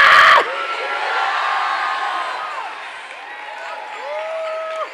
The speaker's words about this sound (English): Matter of fact, everybody that needs something from God, scream thank you, Jesus.